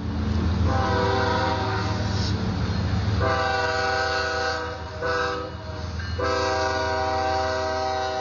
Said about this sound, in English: And as we were standing there talking, you know, one of these trains came past.